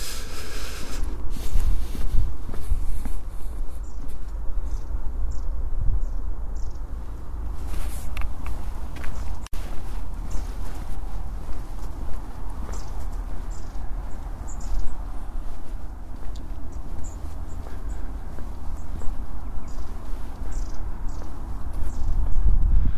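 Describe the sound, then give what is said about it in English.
A group of long-tailed tits at the top of a tree give thin, high, faint chirps in scattered short bursts throughout, over a steady low rumble and occasional rustling. No one speaks. “Chirping at the top of the tree is a group of long-tailed tits, the lollipop bird, just flittering around in their little gang.”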